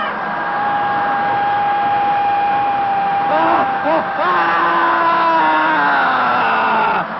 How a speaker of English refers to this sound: The next phase, the screaming phase of dynamic meditation, feels like when you finally had an opportunity to throw a tantrum when you were a little kid.